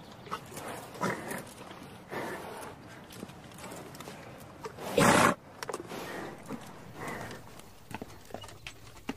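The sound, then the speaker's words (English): Galloping horses' hooves thud and clatter in uneven bursts, with a sharp, loud knocking impact about halfway through as hooves strike poles, over a faint murmur of background noise; teams of horses are running in a scored game. “Those horses look tired from all that running and hitting poles.”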